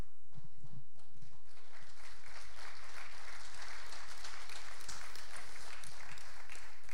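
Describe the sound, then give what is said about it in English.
An audience in a church claps steadily for several seconds, a dense, sustained patter of many hands with no voices heard over it. “You clapped.”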